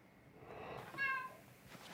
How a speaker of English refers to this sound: Meow. Yeah, I have a miserable cat in the background. I'll see if I can get the youngster to let him out.